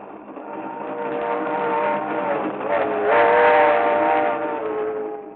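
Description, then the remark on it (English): A train to Miami rumbles steadily along the rails, its sustained whistle sounding over the rolling noise and swelling louder midway through. No voices are heard. “But on a train to Miami...”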